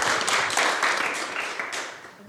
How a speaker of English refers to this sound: So please, can we please applaud them?